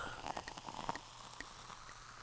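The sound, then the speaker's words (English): Wine glugs and gurgles as it is poured into a glass, a steady stream of bubbly, irregular splashes and small bright plinks, fairly quiet and with no voices. “Oh, do the pouring. Let's see if we can hear that.”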